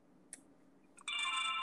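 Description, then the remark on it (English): A couple of soft clicks, then a loud electronic ringtone from a car suddenly starts, with the phone on its charger. It is a bright, steady, multi-toned chime that keeps sounding until the end, with no talking. “I'm sorry, that was my car. My phone's like on the charger, so.”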